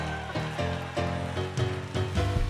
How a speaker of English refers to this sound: Clap your hands one more time all over this house. Come on, clap them like you love Jesus today.